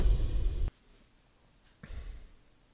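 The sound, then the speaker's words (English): Two heavy mouth breaths, an airy exhale and then an inhale, separated by about a second of near silence, with no talking. “Just me, mouth breathing, looking around like a jackass.”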